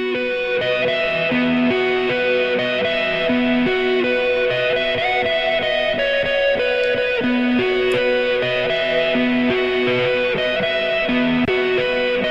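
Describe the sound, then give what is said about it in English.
An electric guitar played through an Ethereal X Space reverb pedal sounds sustained, ringing notes drenched in reverb, each tone washing into the next in a steady, spacious wash of sound with no talking. “Let's have a listen to a reverb here.”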